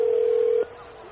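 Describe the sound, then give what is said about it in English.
A steady, single-pitched telephone tone, heard while placing a call to a phone number, holds for about half a second and then cuts off abruptly, leaving a faint hiss of line noise behind it. “I got the number already. Oh, is your phone ringing?”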